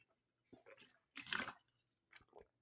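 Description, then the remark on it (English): Someone takes a few wet sips of water, with short slurping gulps and a louder swallow in the middle, no talking. “That was water. First of the entire episode.”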